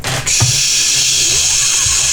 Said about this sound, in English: This is the static station, right? I was kind of trying to adjust my radio.